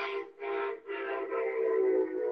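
A loud train horn sounds in two short blasts followed by a long, sustained one, its brassy, chord-like tone held steady with no talking.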